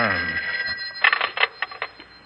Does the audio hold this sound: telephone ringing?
yes